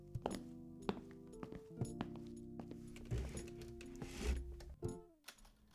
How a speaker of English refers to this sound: And Finn is typing, like there's nothing wrong.